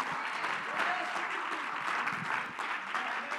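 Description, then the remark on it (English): A church audience claps their hands in praise to the Lord in a dense, sustained wash of applause, steady and fairly loud throughout with many overlapping claps and no clear individual rhythm. “Come on, let's truly clap our hands to the Lord right now.”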